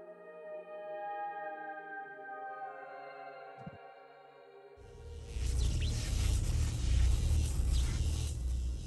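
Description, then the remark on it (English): A steady, layered electric hum of Mad Maggie's Infernal Flyer descending down a canyon drones on several pitches. About halfway through, a loud, rushing roar with a deep rumble takes over and holds to the end. “Looking up to the sky, you hear the electric hum and look up to see Mad Maggie's Infernal Flyer descending down the canyon to your location.”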